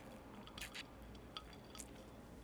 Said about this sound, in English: It's dripping all over my mic.